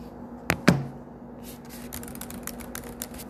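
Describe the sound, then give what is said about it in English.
Fingers tap on a keyboard: two sharp clicks, then a run of quieter, irregular light taps and clatter for a few seconds, with no voices. “I'm moving all my fingers, you know, touching the keyboard.”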